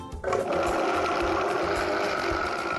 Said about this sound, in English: While our chia layer is in the fridge chilling, we're gonna make our next layer, which is a very simple strawberry puree. You're just gonna add the strawberries right to your blender.